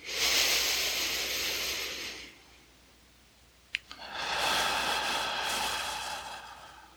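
Two long, airy breaths, fairly loud, taken during a guided breathing exercise drawing energy up into the lower belly, one drawn out and then a pause with a small click before a second slow breath fills the rest. No one speaks.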